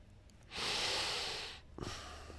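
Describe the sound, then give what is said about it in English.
One long nasal sniff made while thinking, a breathy inhale lasting about a second that fades out, followed by faint background noise and no talking. “That sniff says you're thinking.”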